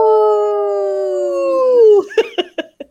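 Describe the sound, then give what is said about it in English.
A person imitates a wolf howl on the radio show Native Roots Radio Presents I'm Awake: one loud, steady, slightly falling note held about two seconds, then four short clipped yips trailing off. “That was a good howl today.”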